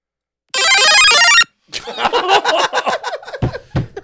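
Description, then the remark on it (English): A Mario power-up growing sound effect: a bright, rapid chiptune arpeggio of stepped electronic tones lasting about a second, followed by people laughing and chattering. “was that Mario getting bigger?”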